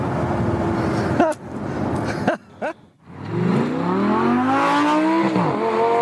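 A convertible sports car with its top off revs hard and loud, its harmonic pitch climbing and falling through several throttle bursts, with a brief drop between blips before a sustained high-revving roar.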